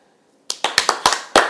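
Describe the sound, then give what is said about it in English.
About half a second of quiet, then a short burst of six or seven sharp, loud hand claps at a slightly uneven pace, a round of applause for one person. No one speaks. “You're not going to clap for yourself?”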